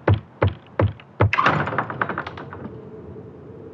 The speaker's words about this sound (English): That was kind of soft. Let me knock again.